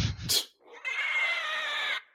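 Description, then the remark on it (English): A short low grunt and quick burst give way to a shrill, drawn-out pig squeal lasting just over a second, fairly loud, with no one talking. “So Ames takes off covered in mud, sounding like a pig”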